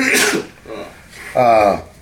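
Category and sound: human body sound, sneeze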